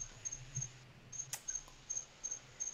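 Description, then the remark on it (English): Crickets chirp in a steady, rhythmic pulse of short high-pitched trills, repeating about every half second. The sound is quiet and even, with a faint low hum underneath and no voices. “And crickets, because we don't know about.”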